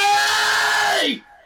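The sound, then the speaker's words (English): A person lets out a loud, drawn-out scream of "Kenobi" in the style of Darth Maul, holding steady for about a second before the pitch drops and the voice trails off abruptly. “Hello, I thought you were gonna scream like Darth Maul Kenobi.”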